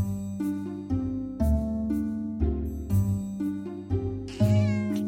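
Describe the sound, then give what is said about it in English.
A black cat meows repeatedly, several drawn-out, tonal cries following one another closely, fairly loud with no talking. “Stanko's black cat stalked past the sofa after a mouse”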